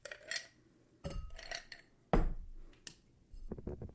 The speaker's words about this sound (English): So here's the next thing we're going to do is fill that glass with ice.